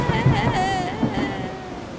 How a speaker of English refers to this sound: Just as she was going back to town with the bread, a huge gust of wind grabbed the 12 loaves and sent them sailing through the air and into the sea.